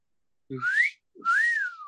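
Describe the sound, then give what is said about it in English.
A person gives a two-part wolf whistle at a man: a rising whistled note, a short pause, then a second note that rises and slides back down, clear with no talking. “And I give him a little whistle because I find you attractive, sir.”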